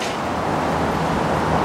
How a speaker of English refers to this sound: Yeah, even from this distance, you can hear the traffic.